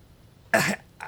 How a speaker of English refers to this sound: He says, "I'm in your windpipe. Give a cough." Cough, and it comes out.